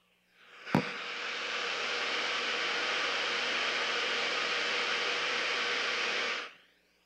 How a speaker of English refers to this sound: And now I got an iPhone that I can lay there, and I can pick any noise I want to on that phone. Now, that is so cool. And I just pull up, and I go, well, it's about time to go to the bed here. So I need to get to my white noise, and here we go.